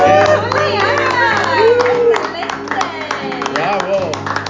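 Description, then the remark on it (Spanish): A crowd claps and cheers together after a live song, steady scattered applause mixed with excited shouting voices, loud, lasting a few seconds over a low steady hum. “Un aplauso.”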